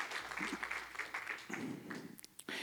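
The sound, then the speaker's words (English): A church audience gives the Lord a hand clap of praise during a morning service, breaking into steady hand clapping, a dense, continuous patter of many hands at fairly even loudness, with a few sharper bursts toward the end. “Will you give the Lord a hand clap of praise this morning?”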